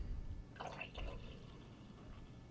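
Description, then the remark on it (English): Beer is poured into a cup: a short, soft splashing burst of liquid with a bubbly, trickling texture, followed by a faint fizzing hiss that trails off. “It's like, that's the sound that you want when you're pouring beer into a cup.”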